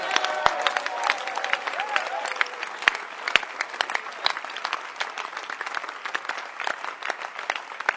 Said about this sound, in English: May you even clap your hands with joy.